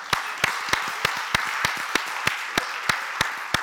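An audience applauds a participant after a timed Play-Doh modelling challenge, in a steady wash of clapping, with sharper, louder claps standing out at a regular beat roughly three times a second. No one speaks.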